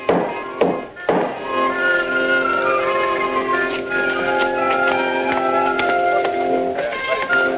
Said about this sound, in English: And that, of course, is the nailing of the famous 95 Theses to the door of the Wittenberg Church.